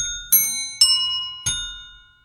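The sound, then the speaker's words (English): Three clear bell strikes in quick succession, each a bright ringing tone with sharp attack and long shimmering decay, fairly loud, rung as tuning notes to the 'my dog has fleas' tune, with no voices. “Let's tune up our bells.”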